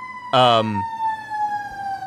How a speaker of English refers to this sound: Sirens are on our end.